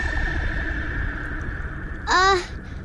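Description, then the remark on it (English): A short, loud, monster-like howl rises in pitch with a moaning, tonal quality, lasting under half a second, over a steady low hum and rumbling background. “It is the sound of darkness, a moan and a groan, a growl and a grunt.”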